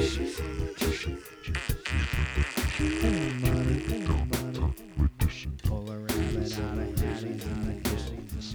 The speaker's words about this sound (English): Hit him with the farts.